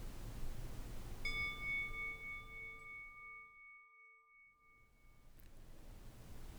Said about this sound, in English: We will begin and end by bringing awareness to the sound of a chime.